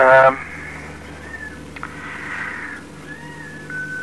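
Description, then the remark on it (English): A four-week-old female kitten mews with one short, loud cry right at the start, followed by a few faint, thin squeaky calls over a steady low background hum. “My little kitten here is just making a heck of a lot of noise.”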